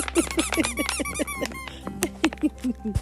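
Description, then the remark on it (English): A squeaky plush Easter toy monkey, furry, green and brown with a little top hat and a little water bottle inside, squeaked over and over in quick bursts, high-pitched and rhythmic, with a short pause midway before several more squeaks. “It's a little monkey and he's furry and he's green and brown. He's got a little top hat. And he squeaks and makes noise.”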